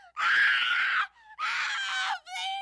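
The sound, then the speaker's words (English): Piercing, loud screams in the dead of night, two long bursts separated by a brief gap, then a shorter squealing cry at the end, harsh and high-pitched with no talking. “There was a scream that awoke everyone in the dead of night. It was a blood-curdling squeal.”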